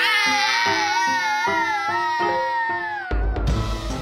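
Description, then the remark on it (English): A mother and daughter scream together at full volume: a long, wavering high-pitched scream held over a lower voice that rises and falls in rhythmic pulses, ending in a harsh, ragged burst. “The screams in this episode came from”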